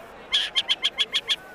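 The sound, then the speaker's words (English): A shrill eagle screech: one longer piercing cry followed by six quick, evenly spaced high notes in a chattering run, fairly loud, with no voices present. “Glass eagles don't screech.”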